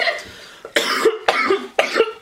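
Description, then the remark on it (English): Three harsh coughs come in quick succession, each a loud raspy burst, with no talking around them. “they over there coughing up along they damn self.”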